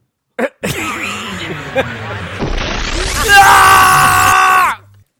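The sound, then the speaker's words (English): Loud screaming and yelling run for several seconds, building into a shrill, sustained high-pitched scream that cuts off abruptly at the end. “All that screaming reminds me of Kentaro Walks Japan.”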